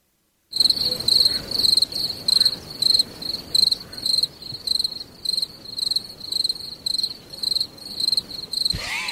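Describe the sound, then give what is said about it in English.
A mosquito's high, thin buzzing pulses in a steady, rapid rhythm, fairly loud, continuing throughout with no voices, then cutting off abruptly near the end. “I particularly like that the mosquito.”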